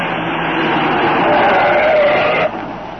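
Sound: car speeding away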